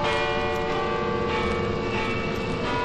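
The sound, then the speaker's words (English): Heavy bells in a bell tower, broken loose from Spider-Man's webbing, ring loudly and continuously, their clanging overtones blending into a dense, sustained wash of metallic tone with no pause and no voices. “The bells, they broke loose from the webbing.”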